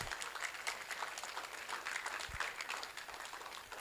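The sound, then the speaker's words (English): A standing church audience claps steadily to welcome a guest speaker invited to share the word, a dense, continuous patter of many hands at even loudness throughout, with no voices rising above it. “Why don't you stand and give him a round of applause?”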